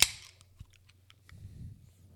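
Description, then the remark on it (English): A sharp pop and hiss as a can of peanut butter beer is cracked open, followed by a short pause and then a low, gurgling pour of thick liquid, with no talking. “Are we drinking this beer yet or what? Sure, we can crack it if you want.”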